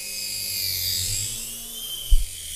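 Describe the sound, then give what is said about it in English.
A steady, high-pitched electric whine from a small remote control toy helicopter's rotor hums continuously, with a low rumble underneath and a brief soft thump near the end. “I also like the helicopters. I'm still a big fan of those.”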